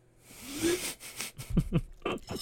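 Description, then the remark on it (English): Wet slurping as the last leftover cereal milk is sucked from a bowl, a few irregular noisy pulls with squeaky gulps over a couple of seconds, fairly loud and with no talking. “When it's finished, slurp down that Captain milk.”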